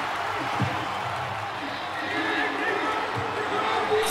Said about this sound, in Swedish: Så då satte jag på min mobil crowd ljud för att det ska kännas mer rimligt att kolla på. Ah. Och då låter det så här.